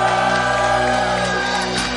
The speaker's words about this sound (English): Do you believe it? Yes. If you believe it, then give the Lord a shout of praise.